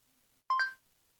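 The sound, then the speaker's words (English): A single short electronic beep from a phone messaging app, signalling the start of a voice message recording: a bright two-tone chirp lasting about a quarter second, clear against near silence with no talking. “Speak after the beep sound.”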